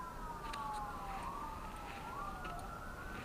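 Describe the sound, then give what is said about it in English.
A siren wails in long rising and falling tones over a steady wash of highway traffic noise. “But I mean, like, we can hear the traffic from, like, the Right. highway.”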